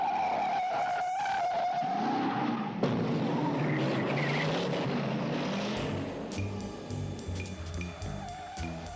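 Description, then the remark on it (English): A loud, continuous movie car chase: roaring engines and a high tire squeal early on, then rumbling motors and sharp clatters and screeches, with no one speaking. “So then you end up having one of the most cool, most sought-after car chases in movie history.”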